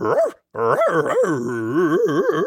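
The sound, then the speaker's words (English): A person imitates a dog loudly, voicing a wacky talking dog sidekick called Inspector Barks a Lot: a short yelp, a brief pause, then a run of wavering, whiny howling and growly yowls without any words. “And we've got a wacky talking dog sidekick.”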